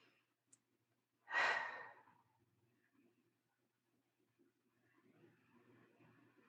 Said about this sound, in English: Breathing softly in through the nose, out through the mouth.